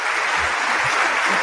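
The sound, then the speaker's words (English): A crowd applauds steadily, a dense wash of many hands clapping at once with no single claps standing out, fairly loud and unbroken throughout. “You heard clapping? I think I heard clapping, yes.”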